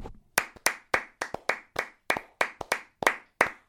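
A single pair of hands claps a dozen or so sharp, crisp times in a steady, slightly uneven rhythm, with a couple of quick double claps. No voices accompany it.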